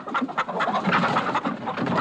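Chickens cluck and chatter in a busy, continuous flock, the overlapping short calls filling the scene at a steady moderate level with no one talking.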